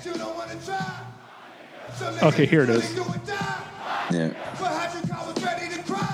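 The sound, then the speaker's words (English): A concert crowd at a rock festival where a rapper is performing yells and cheers in loud, surging bursts, with a voice shouting over the roar and the noise rising and falling in waves throughout. “And, you know, you can tell here that just like the energy between … and the crowd was just.”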